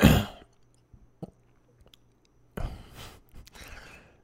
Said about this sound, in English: Let me see if I can say this without coughing.